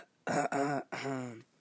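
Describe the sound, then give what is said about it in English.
A person gives a short run of forced, throaty coughs: two quick voiced bursts, then a longer rasping one, sounding staged rather than natural. “I dare you to cough a lot, like”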